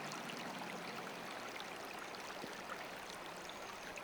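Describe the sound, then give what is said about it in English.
Steady, soft babble of flowing river water fills the whole stretch, a continuous gentle rush with faint trickling detail, calm and unbroken, with no voices. “Now start to feel the river slowing down.”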